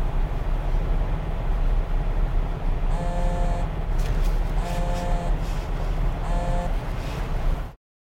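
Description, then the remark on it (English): A man's mobile phone buzzes three times in short, evenly spaced bursts and goes unanswered, over the steady low rumble of a moving car, with no one talking. “Yeah, she says no surprises, and then his phone starts to buzz.”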